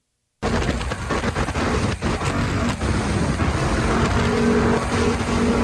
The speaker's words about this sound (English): What is that? What's the static? Wind.